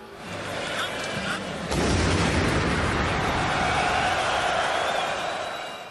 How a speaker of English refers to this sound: But if there was any doubt, Paris was under siege. The sound of a massive explosion unleashed to a global TV audience watching France play Germany left nobody in any doubt.